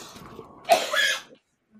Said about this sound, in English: You're such a bitchy cough. Did you guys hear that? It sounds like a squeaky toy. He's a fucking horse. Like a pig getting hit by a semi truck. Did you like give birth to a baby horse? Is that what I just heard?